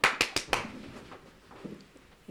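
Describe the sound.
Four sharp, loud hand claps ring out in rapid succession as a grandmother claps her hands to simulate gunfire, in a home drill teaching children what to do when they hear gunshots, then give way to quiet shuffling and faint rustling.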